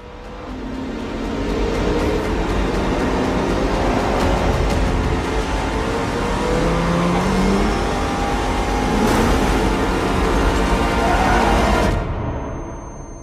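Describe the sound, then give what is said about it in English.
Car engines in the first trailer for the Michael Mann film Ferrari, starring Adam Driver and Penelope Cruz, roar and rev loudly and continuously for about twelve seconds, with rising and falling engine pitch layered over a dense rush of noise, then everything cuts off abruptly. No one speaks. “So here is the first trailer for that film.”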